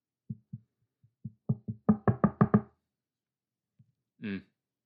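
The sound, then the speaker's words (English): Knuckles rap on a wooden table about a dozen times, starting soft and sparse, then growing louder and quicker into a dense burst. After a pause, a short vocal sound follows. “So that's me knocking on the table.”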